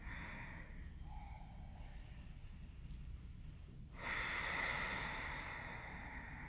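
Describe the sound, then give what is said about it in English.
Deep, steady breathing in and out through the nose during a hip-lifting exercise: a long, airy breath for about four seconds, then a louder, rushing breath that fills the rest. No one speaks. “Awesome breathing in and out through the nose.”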